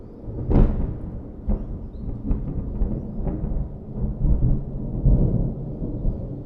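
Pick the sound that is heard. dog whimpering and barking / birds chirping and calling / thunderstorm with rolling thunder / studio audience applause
thunderstorm with rolling thunder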